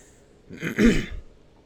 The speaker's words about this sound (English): Clear your throat.